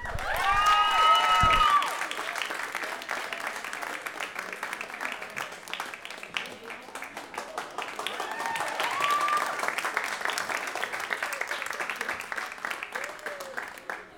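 Sustained audience applause at an evening event with a moderator, welcoming a Grammy-nominated singer with four albums, a dense, crackling wash of clapping that lasts the whole stretch, with crowd cheers and a few shrill whistles rising over it at the start and again partway through.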